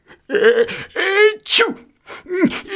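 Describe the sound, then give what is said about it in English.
A voice acting as Santa in a Christmas story acts out a series of sneezes, roughly four loud bursts in quick succession, each a drawn-in breath snapping into a sharp, voiced 'achoo'-like release. “"Santa, you sneezed," they all shouted together.”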